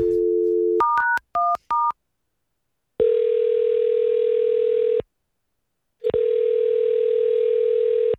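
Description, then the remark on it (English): A steady telephone dial tone gives way to a quick run of keypad dialing beeps, followed by two long, even ringing tones separated by a pause, with no voices, as a prank call is placed on the Breaking Dad segment on radio station Q102 about a car in the shop for a tune-up. “So we're going to call and tell him that we need to hold on to his car for a little while longer.”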